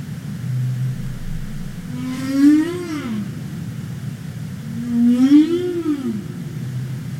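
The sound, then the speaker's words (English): Two long, rising-and-falling humpback whale calls played from a video, each a moaning upsweep with rich harmonics, separated by a pause over a steady low underwater rumble; no talking. “So these are the calls of the humpback.”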